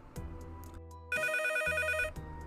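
A telephone rings in one loud, bright burst of trilling tones lasting about a second, set against a steady low musical background that continues before and after.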